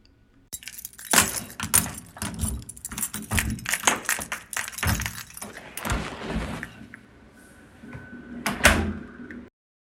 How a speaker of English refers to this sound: At 7 p.m., I open my apartment door to darkness.